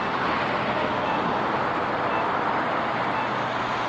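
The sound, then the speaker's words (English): A steady wash of road traffic as cars pass along a cross street running perpendicular to the listener, at a signal-controlled crossing, a continuous rushing roar with no distinct individual pass-bys and no voices. “Obviously, you can hear the cars moving perpendicular to us.”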